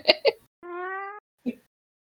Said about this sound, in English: I think that's a yes. The cat suggestion is meow. I apologise to our listeners for the presence of a cat.